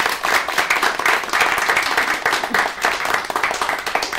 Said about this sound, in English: Oh, thanks so much to all of tonight's wonderful storytellers and to our studio audience, which really helps bring things to life here. Give yourselves all a round of applause.